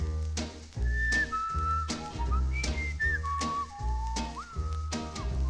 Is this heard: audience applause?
no